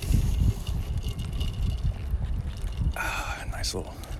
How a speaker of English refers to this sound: You can hear my Yeti cup, my Yeti knockoff.